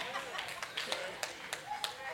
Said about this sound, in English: I had three parents clap their hands.